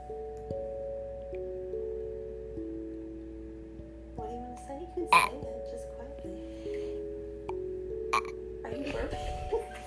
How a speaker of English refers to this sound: Are you burping?